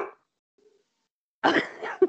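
A dog barks, one harsh, rough bark followed by a shorter yelp, with a clipped burst at the very start and near-silence in between.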